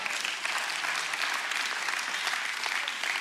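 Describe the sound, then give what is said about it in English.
An audience applauding during a sermon, a steady wash of overlapping claps that holds at an even, moderate level for the whole stretch, with no voices over it. “Thank all 17 of y'all for that rousing applause and celebration.”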